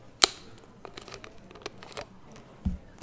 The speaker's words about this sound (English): Now for the satisfying part. I'm going to open up very carefully my plasticky American Coke.